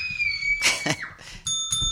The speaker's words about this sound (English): There's that little bell.